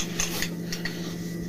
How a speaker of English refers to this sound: He's in the kitchen. That's why you can hear like pans banging around.